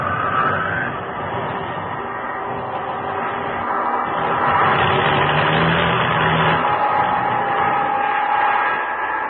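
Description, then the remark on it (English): An airplane engine with engine trouble drones continuously over the open ocean, running rough and uneven, swelling slightly louder partway through before easing back. No voices, just the steady mechanical roar. “Engine trouble.”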